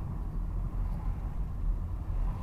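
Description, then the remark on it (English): Steady, low road rumble of a car driving along in traffic that is moving again, a continuous engine and tyre drone at a constant moderate level with no voices. “Traffic's moving again now.”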